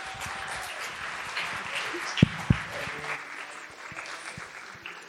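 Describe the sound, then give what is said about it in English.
An audience applauds the panelists steadily, a dense wash of many hands clapping at once with a couple of sharper, louder claps standing out midway, no voices heard. “But another round of applause for all of our panelists.”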